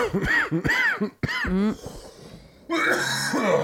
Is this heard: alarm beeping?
no